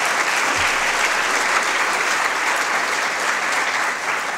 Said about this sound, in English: Please give her a round of applause.